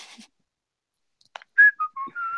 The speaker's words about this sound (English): Now I can whistle. Can you whistle? Can we hear it?